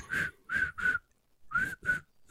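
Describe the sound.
A person whistles short, high chirps in two quick bursts of three, separated by a pause, imitating crickets. Fairly loud, with no talking.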